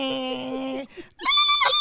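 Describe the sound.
A voice imitates the failing transmission of a 1995 Geo Metro two-door hatchback: a steady droning hum cuts off, then after a short pause a strained, high-pitched whine rises loudly and sputters to a stop.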